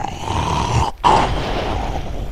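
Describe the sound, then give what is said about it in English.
A deep, gritty grinding rumble of rock grating on rock as a stone giant, 20 to 25 feet tall, wakes on the opposite side of a ravine wall, steady and loud, broken by a brief pause about a second in before surging back. No voices. “Sounds like rock grating on rock.”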